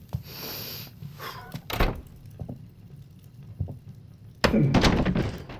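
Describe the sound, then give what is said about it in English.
A door being opened: a few soft knocks and a solid thunk early on, then a louder, sustained rattling scrape near the end, with no voices. “I opened the door”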